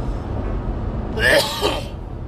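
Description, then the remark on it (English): A single sharp cough bursts out, breathy and harsh, lasting under a second against a low, steady background hum. “Well, I'm coughing.”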